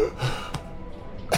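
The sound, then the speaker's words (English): Breathy gasps: a sharp intake of air, another quick catch of breath, then a final loud gasp, with faint breathing between and no talking. “She wants someone who's breathing, not gasping.”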